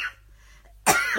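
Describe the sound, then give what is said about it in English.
A single loud, harsh cough bursts out after a moment of near silence, rough and breathy with a raspy tail. “I've got a cough on them.”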